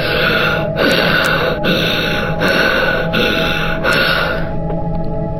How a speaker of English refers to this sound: About 1 hour later, Chris was sound asleep when he woke up to really loud breathing.